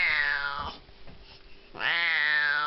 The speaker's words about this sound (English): That's all they had were Siamese. And they make very, very interesting meows. Yes, they do.